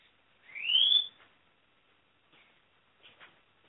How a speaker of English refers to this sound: I hear a bird.